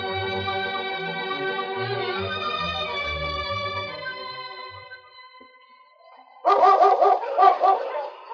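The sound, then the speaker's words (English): Sustained orchestral music fades out, then a dog, the husky Yukon King, barks loudly in a quick series of sharp, ringing barks at the end. “With Sergeant Preston and his wonder dog, Yukon King, as they beat the Challenge of the Yukon.”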